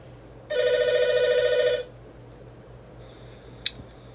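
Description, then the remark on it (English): A telephone rings once in a single loud, trilling burst of a bit over a second, then stops as it is picked up downstairs. A faint tone and a sharp click follow against a quiet room hum. “Hey, we picked it up downstairs.”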